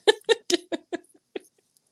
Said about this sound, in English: Did you hear my cat?